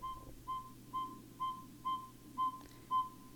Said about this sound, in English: Okay, let's listen to this little owl. Oh. Oh. Are they beep beeps? That's an owl? Hold on, I'm going to turn up my phone so everybody can hear.